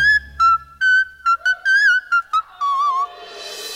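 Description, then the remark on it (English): A voice sings very high, piercing whistle-register notes, a quick run of short staccato pips followed by a longer wavering held tone, loud, with a rising hiss of noise at the end. “I'm so here for this whistle tone.”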